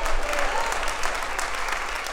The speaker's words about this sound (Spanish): Vamos, si ese aplauso es para mí está bien, pero si es para Dios, dáselo fuerte.